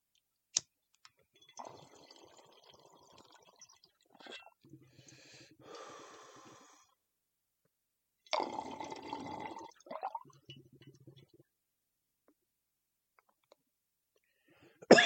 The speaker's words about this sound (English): I'm gonna take a hit of this Han Solo. If you hear click, click, cough, cough, you know what time it is.